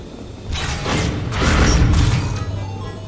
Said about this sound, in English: Oh, the doors automatically close, and then they sort of...